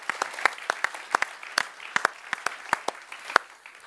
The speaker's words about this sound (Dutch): Hey man, come on, why don't we give God a hand right now? Een applaus geven. He is good. Hij is goed.